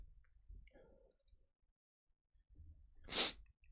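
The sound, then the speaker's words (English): A single sharp, breathy sneeze from someone fighting a head cold bursts out loudly after a few seconds of quiet rustling and soft breaths, its hissy noise spreading high and bright before cutting off quickly. “I've been fighting a little bit of a head cold, so forgive me for that. I'm trying not to sniffle and stuff in front of the microphone, but it's kind of hard.”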